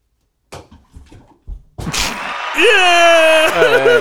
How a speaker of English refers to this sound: Wow. And the crowd goes wild.